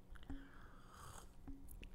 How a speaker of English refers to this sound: Let me take a sip of my coffee here.